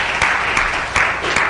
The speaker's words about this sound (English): If you agree with that, would you applaud? I believe it.